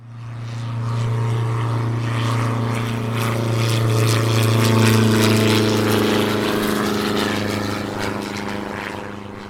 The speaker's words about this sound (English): A small plane flies across the Denali National Park in Alaska and lands in the water at Two Moons Lake.